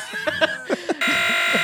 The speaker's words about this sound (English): I will be muting you. Just beep him out. Like make people think he said something racist.